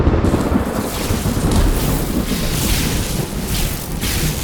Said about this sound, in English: The lightning kept striking violently, leaving a smoldering mess everywhere.